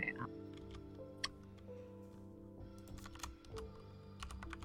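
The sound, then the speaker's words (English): Irregular bursts of sharp keyboard clicks from someone typing, some keystrokes crisper and louder than others, over a steady low electrical hum. “Oh, I need to mute my... So you 66. Don't hear my tech.”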